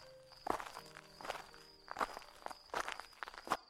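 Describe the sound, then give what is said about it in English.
Slow, evenly paced footsteps walk up broken steps towards the front door of a farmhouse, about five crisp scuffing thuds roughly a second apart, over a faint steady high hum and low background drone. No one speaks. “I gripped the revolver tightly and walked up to the broken steps towards the front door.”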